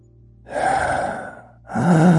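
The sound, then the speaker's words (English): Heavy, loud breathing right up against the microphone: a long, rushing breath followed by a second, deeper one, with no talking. “But it sounds like my breathing's really heavy, and it's not.”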